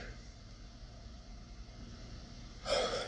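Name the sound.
yawn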